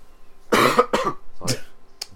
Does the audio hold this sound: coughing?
yes